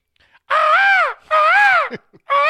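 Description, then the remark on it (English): A girl imitates a snow goose, giving loud, nasal, honking calls: two long arched squawks with a short gap between them, then a third one beginning, each rising slightly and falling off. “No, that's a snow goose.”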